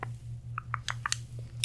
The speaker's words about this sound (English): You said it doesn't sound like a regular scissors. It's not. It's a plastic scissors, but it's still a scissors.